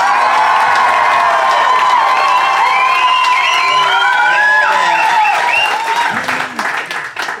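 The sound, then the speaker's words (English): A live audience bursts into sustained applause mixed with cheers and whoops, applauding as a vote for 'Team Cat Ran Out the Room'; loud and dense throughout, then the clapping thins out and tapers off near the end. “If you'd like to go with Team Cat Ran Out the Room, applaud now.”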